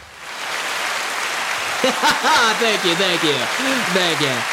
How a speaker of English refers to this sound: Some things are moving and grooving in my life. I need to play a round of applause for myself.